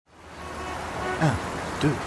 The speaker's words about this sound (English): It's pretty windy up here today, as you can probably hear. I think I might be about to be blown all the way to Paris.